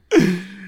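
A single sneeze bursts in abruptly with a breathy rush, then trails off into a short, voiced, fading tone. It is fairly loud, and no one talks over it.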